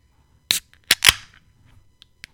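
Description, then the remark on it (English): A can of blackberry, blueberry, raspberry and roselle fruited sour beer being cracked open: a couple of sharp metallic clicks, then a louder snap with a short fizzing hiss, followed by two faint ticks. No one speaks. “Crack this bad boy open.”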